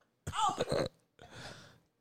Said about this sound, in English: It's just I got a fart.